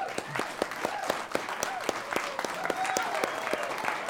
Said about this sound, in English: The singing, the playing, I'm just so thrilled with the entire performance. That's wonderful. Let's give a big hand